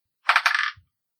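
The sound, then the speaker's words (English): A short, bright clatter of dice rolled for a perception check, tumbling across a hard surface for about half a second and ending in a soft low thump as they settle, with no voices. “Roll perception.”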